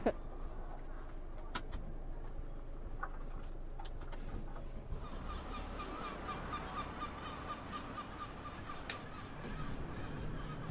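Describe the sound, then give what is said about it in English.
Lots of seagulls call repeatedly outdoors in Liverpool, their harsh, overlapping cries growing busier partway through over steady wind-like background noise, with faint voices murmuring at times. “Lots of seagulls out today.”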